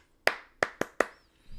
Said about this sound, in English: When the kids aren't listening to me, I do the clap that they did in their preschool. That's like this.